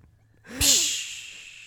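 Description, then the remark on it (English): A person makes a brief voiced intake, then blows one loud, forceful breath into another person's mouth. The airy hiss fades gradually over about a second. “You just are breathing into his mouth.”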